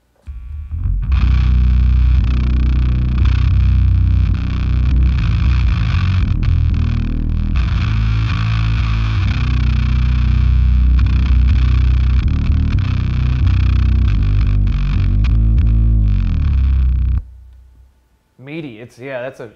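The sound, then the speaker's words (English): Thick, loud fuzz guitar through a Swollen Pickle fuzz pedal, sustain cranked a little and filter, crunch and scoop rolled back, so it is not fully fuzzed out but still massive, chugs through heavy low-end chords for about seventeen seconds, then cuts off, leaving a brief, quieter bit of higher sound at the end. “I usually crank the sustain a little bit, but I'll roll back the filter, the crunch, and the scoop.”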